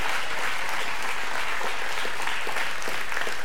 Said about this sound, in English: And so, yes, give them a great big hand clap of praise. Amen. Come on.